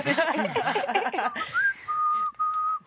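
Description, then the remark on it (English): After a moment of voices, someone whistles a short tune: a quick rising note, then a couple of long, steady tones with a brief break between them. “I'm big on whistling.”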